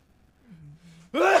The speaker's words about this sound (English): Oh, no. Bless you.